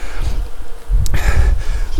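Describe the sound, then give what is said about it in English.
Wasps buzz steadily, circling outside a makeshift house made of sticks, an insect-like hum at moderate volume with a brief sharp rustle partway through and continuous low rumble underneath; no one speaks. “I can hear the wasps. They're outside the house.”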